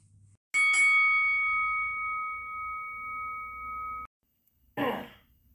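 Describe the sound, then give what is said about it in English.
A single final bell is struck once to close the main event, its clear metallic tone ringing steadily for a few seconds before cutting off abruptly, followed by a brief rough throat-clearing sound. “I think I'm heartbroken enough, and I'm going to put the main event to a close, and I'm going to ring the final bell.”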